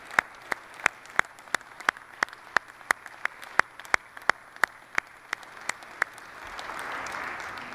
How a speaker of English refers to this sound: I don't believe that we can remain seated. I believe we must rise and we must give God and his word an ovation right now.